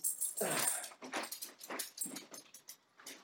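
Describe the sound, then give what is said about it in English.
A dog whimpers and whines in a series of short, high-pitched bursts, fairly loud, with a longer sliding whine near the start and no one talking. “He's taking a break for his dog right now. This is a doggy break.”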